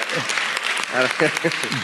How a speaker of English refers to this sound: They're clapping now. At that comment.